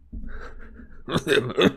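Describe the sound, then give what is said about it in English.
A narrator reading aloud from a Harry Potter book clears their throat: a low, rumbling hum followed by two or three harsh, raspy bursts, fairly loud, with no talking. “Sorry, you gotta clear my throat.”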